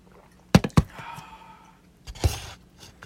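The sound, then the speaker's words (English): Two quick knocks like glasses touching in a toast, followed by soft slurping sips and a brief rustling gulp as two people drink at the same time. No one speaks. “Is we end up cheersing, so we're both taking a drink at the same time.”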